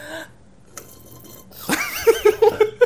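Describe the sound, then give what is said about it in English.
A bubbling gurgle as someone drinks water, rising into a rapid series of wet pops like a bong hit, loud, with no talking. “That sounds like I just took a bong hit.”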